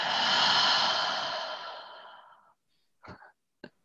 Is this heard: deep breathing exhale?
yes